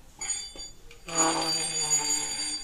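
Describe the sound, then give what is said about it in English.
A chair scoots across the floor as someone gets up, starting with a couple of faint, short squeaks and then a loud, sustained, ringing screech with a bell-like tone that holds for over a second. “I'll go, like, to do something, and I scoot the chair, and it's like...”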